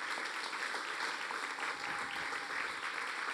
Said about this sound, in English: Come on, give them a big round of applause as they come.